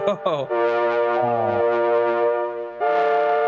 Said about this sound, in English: So we've got distortion. Let's turn on this.